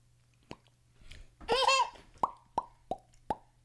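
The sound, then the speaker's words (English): A soft click, then a brief wet, bubbly gurgle followed by four crisp bubble-popping plops in a loose, uneven rhythm, each one short and fairly loud against near silence. “I told him that he's going to blow a bubble out of his butt.”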